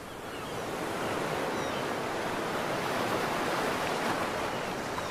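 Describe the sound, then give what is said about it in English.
A long, steady breathy exhale, fairly loud, made by a voice imitating the rush of ocean waves as air is let out through an open mouth while the hands come down; it swells in at the start and holds a soft hiss throughout. “Make a sound like the ocean.”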